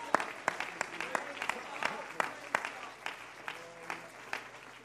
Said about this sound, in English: Somebody clap your hands to the Lord right now.